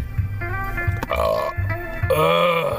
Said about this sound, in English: Now I'm burping, and it tastes like a fucking hoagie.